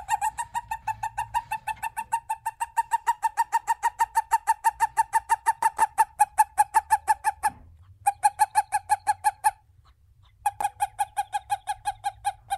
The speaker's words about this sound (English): male toads have a special chirp that they use to signal other males that like, hey, I don't actually have eggs for you